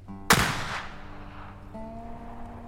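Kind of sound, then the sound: sound effect, gunshot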